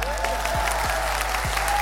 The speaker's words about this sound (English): Round of applause for Denver, Colorado.